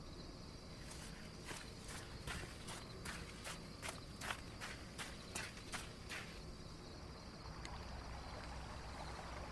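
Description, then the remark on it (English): Water flows steadily at night with a constant rushing wash, and a run of regular splashing steps sounds over it for the first six seconds before the stream carries on alone. “The water feels so nice tonight.”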